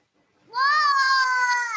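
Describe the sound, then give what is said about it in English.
A child imitates the roar of Kion, the lion from The Lion Guard, with one loud, sustained, high-pitched cry that rises quickly and holds steady for over a second, with no other voices. “What does Kion say? What's his roar sound like?”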